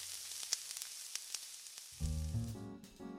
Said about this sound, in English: But no matter how Joseph James tried to organize his sermon, his speeches were no match for the real event of the morning, the thick, inviting scent of Ella Mae's fried chicken crackling on the stove.